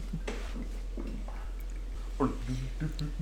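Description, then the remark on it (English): Woodford Reserve whiskey glugs out of a cork-stoppered bottle into a glass in a series of irregular gurgling bursts, quickening toward the end, over a steady low background hum. “The pour sound.”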